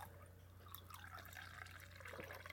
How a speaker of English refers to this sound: Today we're drinking Reviva 2015 Cabernet Sauvignon. I'm going to pour myself a glass here.